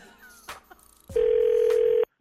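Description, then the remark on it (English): A telephone rings for a prank phone call: one loud, steady electronic tone held for about a second at an even mid pitch, then cut off abruptly, with faint murmuring sounds just before it. “We'll get into that in just a little bit, because right now the nephew is here with today's prank phone call.”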